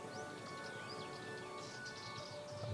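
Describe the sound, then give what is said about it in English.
Faint birds chirp intermittently, scattered short tweets over a quiet, steady outdoor background hush, with no voices, at a small farmhouse on the island of Paros in the Cyclades, Greece. “That's a soulful, very quiet place, which I'm sure you can hear just the birds and maybe a rooster.”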